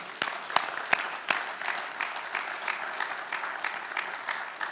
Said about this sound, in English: Yeah, let's clap.